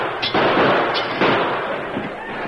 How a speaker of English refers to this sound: He took deliberate aim at the large chandelier that hung in the center of the cafe. He fired and it crashed to the floor. Then he deliberately picked off the small lamps on either end of the bar.